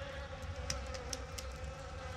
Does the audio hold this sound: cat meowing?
no